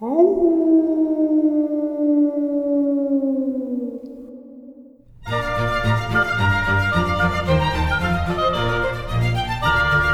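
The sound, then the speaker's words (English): A single long wolf howl swoops up and then slowly sags downward for about five seconds, loud and clear with nothing under it, before music abruptly takes over. “A little wolf howl for Halloween.”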